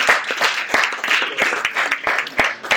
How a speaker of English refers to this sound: All right, so you can applaud. Let's applaud for them.